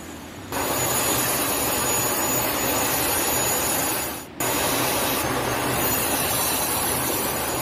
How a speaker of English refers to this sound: Here is Russian Su-35 fighter jet intercepting two U.S. B-52 nuclear bombers over the Baltic Sea.